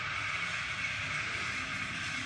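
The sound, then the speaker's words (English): A vehicle engine running rough down the road, seemingly having engine trouble: a loud, steady, unbroken drone with a low, uneven rumble underneath and a hissy upper layer, at a fairly constant level with no voices. “Somebody's vehicle not running properly, it sounds like. Having issues with the engine or something.”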